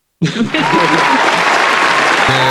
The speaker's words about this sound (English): Hit the applause.